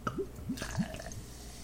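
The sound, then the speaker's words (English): Yuengling beer glugs out of a bottle into a big tall glass in a quick series of hollow, rising bloops about every third of a second, fairly quiet, with a soft liquid splash underneath, leaving a lot of head. “So I'm going to use that to open up my bottle of beer. And now to pour it.”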